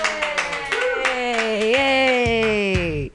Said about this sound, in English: Everybody clap wildly.